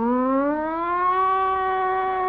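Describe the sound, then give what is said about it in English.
A riot squad's police siren wails steadily, its tone sliding slowly upward and then holding high, loud and continuous with no voices over it. “Then the riot squad comes.”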